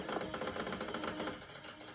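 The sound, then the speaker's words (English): A rapid, rattling mechanical grinding churns steadily for two seconds as an Xbox console disc drive struggles and whirs, failing to grab the disc, moderately loud with no voices. “Sounds like a bad printer job.”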